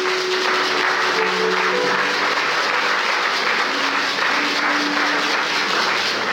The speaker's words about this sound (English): That's a good place for you to clap.